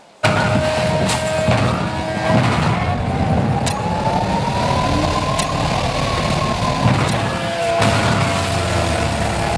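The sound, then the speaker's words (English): A video game car engine roars loudly and steadily as the car launches into a stunt jump, its pitch swelling and falling, with a few sharp thumps and clatters as it lands facing the right direction, no talking. “So now a video of a crazy stunt I realized for the occasion.”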